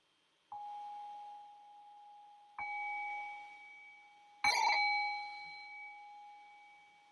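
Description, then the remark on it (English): A meditation bell is struck three times at a slow, even pace to open a guided meditation, the third strike loudest and brightest, each clear ringing tone sustaining and overlapping as it slowly fades. “And so I'll ring the bell here, and I'll just do a little bit of guiding.”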